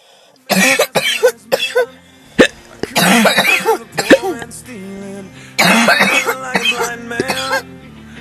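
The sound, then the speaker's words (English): A run of loud coughs and hiccup-like gulps with a wet, throaty edge, coming in several clustered bursts separated by brief pauses, with no talking. “A cough. A watery, chlorinated hiccup.”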